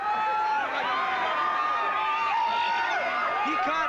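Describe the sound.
A crowd of many people, including kids, screaming and shrieking at Action Park water park in Vernon, New Jersey, with overlapping high-pitched yells that rise and fall in a steady, loud wash of voices for the whole stretch.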